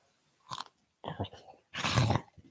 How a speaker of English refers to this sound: That sounded like a fake crunch the first bite.